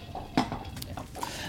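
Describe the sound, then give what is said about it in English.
A water glass is knocked over: one sharp clatter against a hard surface, followed by a few lighter clinks as it settles. No one speaks. “Did Opie just knock over your drink on purpose? She knocked over my water.”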